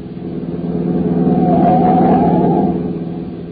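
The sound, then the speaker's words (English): A car engine roars up from behind on a road, swelling to a loud peak as it speeds past another car, almost sideswiping it, then fading away as it pulls off. No one speaks. “Oh, I say, sir, there's a car coming up behind us like fury."”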